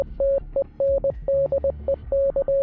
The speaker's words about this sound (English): Stendec sounds confusing in English, but again, here's what it sounds like in Morse code.